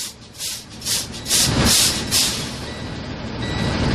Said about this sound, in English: Release both brakes. Dump the brakes down to 90 PSI.